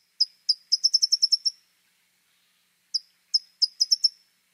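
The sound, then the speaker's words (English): A towhee sings two phrases of bright, high-pitched chip notes, each opening with a few spaced calls and running into a quick rattling series. The song is clear, with no other sounds. “One of the many, many lovable qualities of towhees is they are a relatively rare bird that mates for life.”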